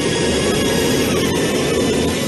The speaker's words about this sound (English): The shattered Pan Am Jumbo can no longer move, but its engines are still running at full power.